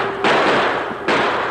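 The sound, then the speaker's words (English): Two loud gunshots crack out about a second apart, fired while trying to turn a stampeding cattle herd, each trailing into a long, rough burst of noise that fills the space between them. No one speaks. “My bullets all gone.”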